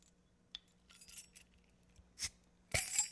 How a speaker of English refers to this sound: I'm going to open up my beer.